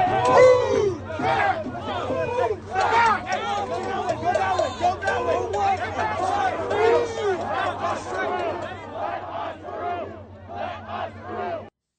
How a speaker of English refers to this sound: Here's just a little bit of sound from some of the riots of 2020. This wasn't the summer of love.